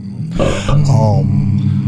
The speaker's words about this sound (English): Was that a belch?